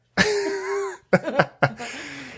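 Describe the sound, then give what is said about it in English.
A dog named Artie gives a drawn-out, low, gurgling burp, followed by a few quick, breathy huffs of panting that trail off into soft, noisy breathing. “I don't know if that went through, but you can hear him panting and burping.”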